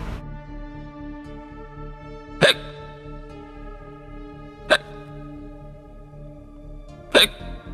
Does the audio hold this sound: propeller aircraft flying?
no